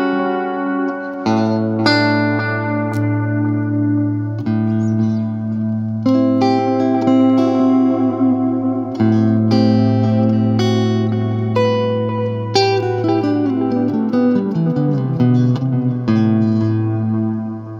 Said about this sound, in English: I dig them. The reverb and delay together is really cool because they almost feed into each other or something when they're on the same pedal.